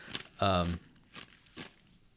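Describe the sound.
Crunching of ice being chewed: a few sharp, brittle crunches spaced irregularly, with a short voiced hum or vocal sound between the first bites.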